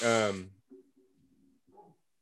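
A single loud, harsh bark from a female pet dog bursts out at the start, then fades into quiet, low murmuring in the background.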